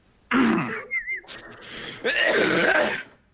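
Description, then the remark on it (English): A loud, close sneeze bursts out, followed after a short pause by another rough, breathy blast, with no talking around it. “Bless you.”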